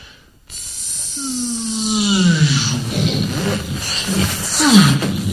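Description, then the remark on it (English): A voice imitates a spaceship taking off as it sounds in movies and shows: a sudden loud, breathy rushing roar with a pitched tone sweeping downward, held for about five seconds with a second rising-falling swell near the end. “But when a spaceship in one of these shows takes off, it sounds something like this.”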